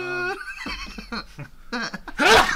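A person sneezes: a drawn-out voiced wind-up with a few short catching breaths, ending in one loud, hissy burst at the very end.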